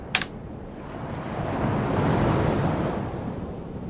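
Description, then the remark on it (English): Ocean waves break on Basin Beach, a broad rushing wash that swells to a peak midway and slowly recedes, with wind in the background and a brief knock at the start. No voices. “On the foreshore of Basin Beach and adjoining Monavale Beach, there are benches and seats that face the ocean.”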